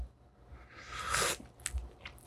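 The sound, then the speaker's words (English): A quiet slurping sip of coffee, a rising airy hiss lasting about a second, followed by a few soft clicks and a swallow. “As much shit as I talk about coffee, and here I am sipping it.”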